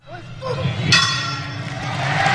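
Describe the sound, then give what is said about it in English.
A wrestling match bell is struck once to start a 60-minute time-limit timer and rings with a bright, metallic tone that slowly fades. A crowd, presented as a live studio audience, murmurs and chatters underneath throughout. “So that is the bell and our live studio audience.”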